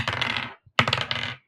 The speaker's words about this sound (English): do you want to do the second roll or do you want me to do the second roll? I've got my dice out for this one, so I think I'll do this one.